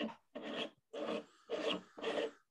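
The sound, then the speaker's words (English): Scratching on a desk: five coarse, rasping strokes in a steady rhythm, each lasting under half a second with brief pauses between, fairly loud and heard alone without any talking. “It sounds like a cat scratching on a desk.”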